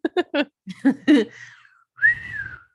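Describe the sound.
A few short breathy puffs, then a person whistles two drawn-out, wavering notes, moderately loud, like an eerie call mimicking a Kushtaka.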